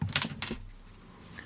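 A few quick knocks against a desk, then a dull, low thud as a hand comes down on the surface, trailing into a soft low rumble and quiet. No voices.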